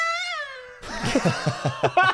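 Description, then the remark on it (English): A voice imitates a Formula One race car with a single high, buzzy whine lasting under a second, its pitch sliding slightly down. Several short bursts of laughter follow right after. “Give two your best Formula One race car impression, please. Here's mine, just in case you're wondering.”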